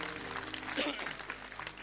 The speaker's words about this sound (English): If you're going to give Jesus a clap, you better give him a big clap, because I'm flipping.